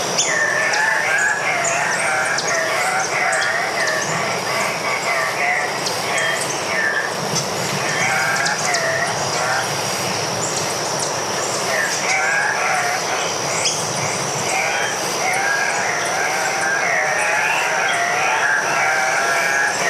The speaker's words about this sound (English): And at dusk one night, we went out to try and capture the sound of the cock of the rock, which is actually the national bird of Peru.